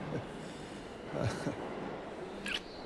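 A subway train rumbles steadily along the rails with a low continuous roar, punctuated by brief metallic squeals and clatters of the wheels, moderately loud, on a Brooklyn line approaching Eastern Parkway–Brooklyn Museum station.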